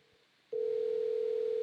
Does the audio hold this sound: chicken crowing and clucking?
no